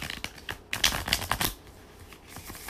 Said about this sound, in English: So I'm going to go ahead and start shuffling the cards. And while I'm shuffling the cards, I'm asking, what advice do the cards have for the collective?